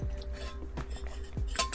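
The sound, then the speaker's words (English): A quick sip of water: soft glassy clinks and a couple of low, muffled gulping thuds over a faint steady hum, with no talking. “Taking a quick sip of water.”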